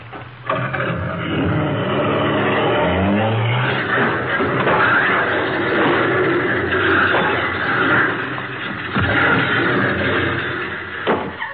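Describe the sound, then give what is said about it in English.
A car with a sticking accelerator revs up, then a long, loud crash of splintering wood and debris rumbles on, with sharp impacts near the end as it smashes through the back wall of a garage. “Why, he went right through the back of the garage.”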